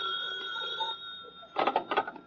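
A telephone rings in two short bursts of bright, rapid bell trills over a steady high electrical hum and faint room noise.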